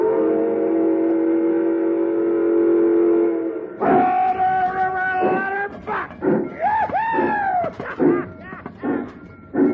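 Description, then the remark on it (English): A loud, sustained steam locomotive whistle sounds for several seconds, then cuts off into a burst of choppy, excited calls and voices with rumbling train noise underneath, as the running train heads toward Dale Creek Bridge. “Hey, did you telegraph through to Laramie to make sure there ain't no other train in my way and coming at us?”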